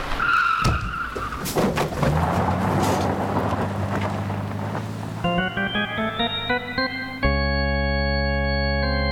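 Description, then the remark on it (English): A car coming down a street with its lights out skids with loud tire squealing: a noisy rush builds into a rising, screeching whine, then cuts to a steady, blaring tone that holds to the end. No one speaks. “That car coming down the street! Got its lights out!”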